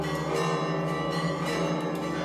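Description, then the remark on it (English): Church bells at the Sepulcher ring loudly and continuously, signalling that it is time for one group to take its watch, their overlapping metallic tones blending into a dense, sustained clang with no voices present. “The bells signify it's time for one group to take its watch, and here they come, all dressed in black, long gray beards.”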